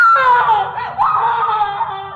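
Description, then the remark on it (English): A woman screams in one long, loud, high-pitched wail that wavers and breaks slightly partway through, sustained for a couple of seconds with no talking around it. “The darkness at the top of the stairs seemed to move, take shape, and I saw... heard her screaming.”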